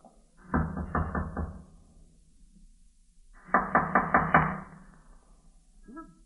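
Someone knocks on a wooden door in a run-down old tenement in two separate bursts of four or five quick, firm raps, with a short pause between them. The knocking is clear, with no talking.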